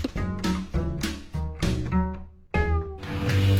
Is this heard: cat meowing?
yes